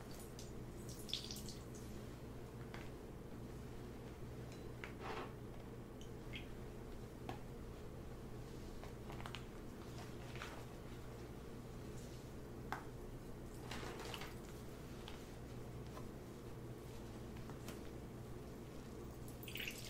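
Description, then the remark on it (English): Warm water drips and soft wet squishes come in irregular bursts from a soaked towel pressed on a person's face before a shave. The sounds are fairly quiet, over a steady low background hum. “And what I'm pretty much going to do is I'm going to just press it on your face with the warm water just so it can open up your pores, it can soften up your skin so it's easier for the shave.”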